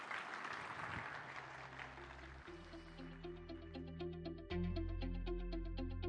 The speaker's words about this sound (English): Can we give the Lord a big hand clap this morning?